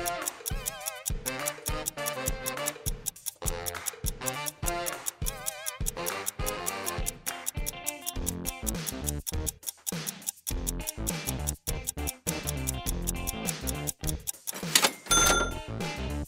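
A clock ticks steadily and quickly, its sharp, evenly spaced ticks running the whole time with a busy, mechanical clatter layered underneath. No one speaks.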